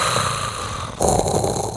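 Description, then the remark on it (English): A voice imitates Darth Vader's heavy, mechanical mask breathing, one long raspy breath in followed by a louder hissing breath out, fairly loud with no talking. “Embrace the heavy breathing,”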